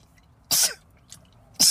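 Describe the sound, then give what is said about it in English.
Three sneezes: two loud, sharp sneezes about a second apart, with a softer, fainter burst between them, with no talking. “Excuse me, I gotta sneeze.”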